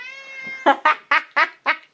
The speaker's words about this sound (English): He must be annoying that my neighbours. He meows so loud.